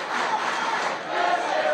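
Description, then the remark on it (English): A wrestling crowd roars and cheers steadily in sustained applause, showing appreciation during a match between Kota Ibushi and Brian Kendrick, a dense wash of voices holding loud for the whole moment with only a slight dip midway. “The crowd showing their appreciation.”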